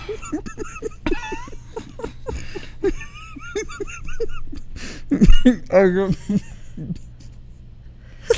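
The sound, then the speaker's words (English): A few short, dry coughs break out midway, fairly loud, mixed in with people talking and a bit of laughter in the background. “Are you coughing? It's so dry.”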